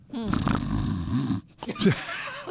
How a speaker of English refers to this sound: So here we got somebody snoring over here in the corner.